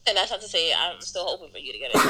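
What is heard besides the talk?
sneeze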